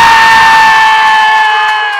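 A loud, sustained burst of crowd cheering for a chef at a cooking competition elimination, with a steady high whistle-like tone running through it, holding for about two seconds before easing slightly at the end.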